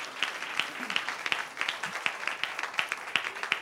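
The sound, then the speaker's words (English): An audience clapping hands together in a steady, rhythmic beat to bless the Lord, the many claps blending into a dense, lively patter that carries on evenly throughout. “Clap your hands, bless the Lord.”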